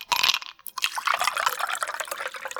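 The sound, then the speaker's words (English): Liquid is poured steadily into a glass, a brief bright clink at the start followed by a continuous splashing, bubbling fill that carries on for a couple of seconds. “She got me pouring it.”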